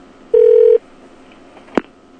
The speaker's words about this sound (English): Apparently it is ringing back, and it hung up on us.